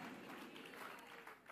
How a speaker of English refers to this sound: Give the Lord a mighty clap of it and shout, thank you, Jesus.